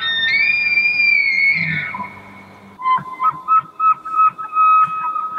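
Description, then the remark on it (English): An elk bugle: a long, high, whistling call that slides upward and holds, then breaks into a string of rapid, squealing grunts and chirps, loud and alone with no talking. “I think they were saying that a lot of them are making a lot of noise, like right around sunset or sundown.”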